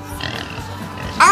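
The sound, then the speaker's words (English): A pig grunts and oinks in short, rough bursts, ending in a sudden louder, higher squeal. Fairly loud, with no talking. “There's that pig! Get him!”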